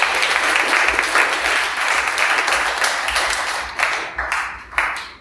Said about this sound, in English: Let's clap to the Lord.